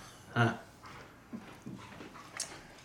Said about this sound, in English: The dogs barking, and then Cliff beating them.